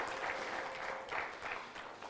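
A crowd applauds steadily, a dense wash of many hands clapping together at a moderate level, sustained evenly without pause for a couple of seconds, celebrating raising over $11,000 to help build a church in Tupai, Philippines.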